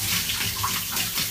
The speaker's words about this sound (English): So I've now got the shower head, I'm going over my legs, which is never the worst bit. It tends to be the part of my body that's not kept as warm as the rest. So I'm just spraying my arms.